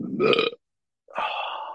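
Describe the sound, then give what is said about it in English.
A loud burp: a short, gravelly belch, then after a brief silence a second, longer drawn-out croak of a burp. No talking. “We got this far into it before a burp.”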